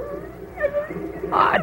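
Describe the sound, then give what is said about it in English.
A dog named Joe whimpers in a drawn-out, wavering whine, then lets out a short, louder bark-like yelp near the end, fairly clear, as it comes back and licks a man. “What's that dog coming back for?”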